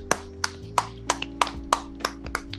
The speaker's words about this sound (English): All right, good. We official now. That clap made us official. That clap right there made us official.